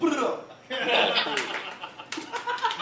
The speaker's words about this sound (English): Golf clap, thank you.